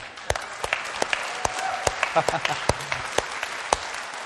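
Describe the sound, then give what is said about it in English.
A church audience applauds people being baptized, with many hands clapping in a steady, dense patter and a few sharper, louder claps standing out across the few seconds. “Let's not have a golf club clap. Are we clapping?”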